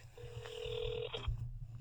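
A phone dialing a call to a friend: a steady electronic tone holds for about a second with a higher tone over it, then cuts off with a soft click, over a low background rumble.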